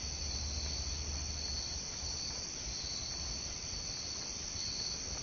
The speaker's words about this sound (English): I can't really see in front of me. Besides just the outline of trees and the sound of insects.